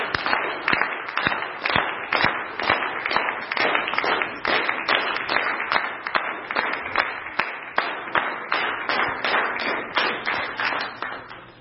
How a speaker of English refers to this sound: So we like to cheer as you go out. So kids, have an awesome class. Be blessed.